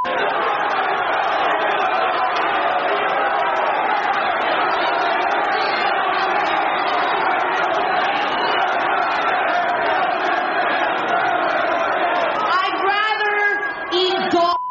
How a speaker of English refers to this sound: I don't need your cheers. Clap for someone who gives it.